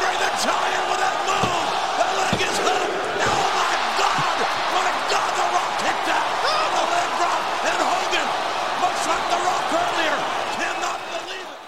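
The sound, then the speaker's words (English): A loud wrestling crowd roars and groans continuously in reaction to a near-fall, a two count where the wrestler kicks out before three, with scattered sharp thuds and slaps cutting through the sustained din before it eases slightly at the end. “That kick out and the exasperation of the crowd when it wasn't three.”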